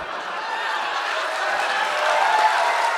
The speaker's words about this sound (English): And that's right. You should applaud her.